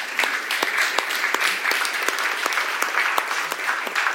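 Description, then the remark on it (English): An audience at a church service claps steadily for several seconds, a dense wash of many hands with sharp individual claps standing out, fairly loud and even throughout with no talking. “So I think it's good that we just take some time and just give a hand clap for my brother”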